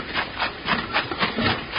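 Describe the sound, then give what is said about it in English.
A washing machine that has been running all day churns with a steady, rhythmic swish-swish, each rasping stroke repeating about four times a second at a moderate, even level, with no voices. “Bill, it's been running all day.”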